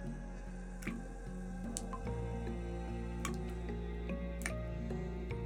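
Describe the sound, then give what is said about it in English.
Sparse, irregular drips, four or five sharp plinks spaced a second or so apart, ring out over a low, sustained musical drone with slowly shifting tones. No one speaks. “Is that water?”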